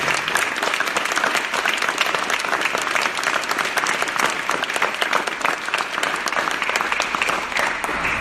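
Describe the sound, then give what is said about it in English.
Sustained audience applause, a dense, steady clatter of many hands clapping at an even loudness for several seconds, with no voices standing out. “I think we can give them a little bit of applause.”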